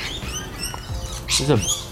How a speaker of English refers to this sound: There's three birds attacking each other over there.